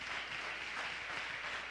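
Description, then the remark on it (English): A church audience applauds steadily to thank God for the preachers, many hands clapping at once in a dense, even wash of sound with no single claps standing out and no voices. “Clap your hands and thank God for the preachers.”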